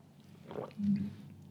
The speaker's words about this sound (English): I'm going to take a sip of my coffee.